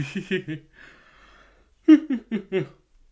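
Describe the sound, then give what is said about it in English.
A person lets out a drawn-out, breathy yawn, with short voiced bursts like soft chuckles before and after it. “Totally unprofessional of me to yawn on the podcast, I know.”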